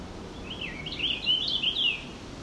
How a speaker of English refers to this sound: More sounding more towards purple finch in my ears.